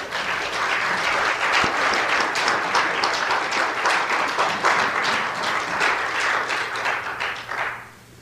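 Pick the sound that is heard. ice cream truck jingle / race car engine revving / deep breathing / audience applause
audience applause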